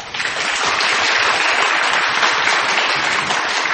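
A crowd applauds steadily for a few seconds, a dense wash of many hands clapping at a constant, fairly loud level with no one speaking over it.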